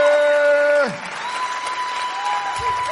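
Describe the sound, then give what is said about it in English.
A held, buzzy tone slides down in pitch and cuts off, then a crowd in Olathe and South Overland Park claps and cheers to welcome a speaker, a steady, fairly loud wash of applause that fills the rest of the moment. “Could do without the clapping.”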